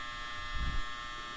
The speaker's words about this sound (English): Sorry, there goes my dryer.